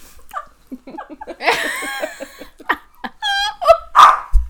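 A dog vocalizes in a string of high, wavering whines and short yips, rising and falling in pitch with brief pauses between bursts.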